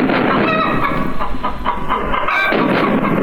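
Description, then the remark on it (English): Chickens cluck and squawk loudly amid a dense, constant rumbling din of British artillery fire with occasional sharp bursts, continuing without pause and with no talking. “British artillery shelling German chickens.”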